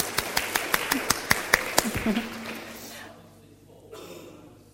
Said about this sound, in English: I think a round of applause is deserved. Thank you.